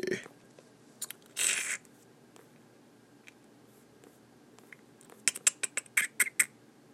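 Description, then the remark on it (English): Scattered keyboard taps while searching on Google, quiet at first, then a quick run of sharp clacks near the end; a brief louder noise breaks in early on. “I'm sure people don't want to sit here and hear me fucking typing.”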